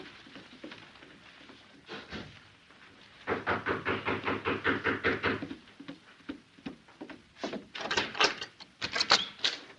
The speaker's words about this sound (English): she and Juan sat in the parlor of the hotel suite when someone knocked at the door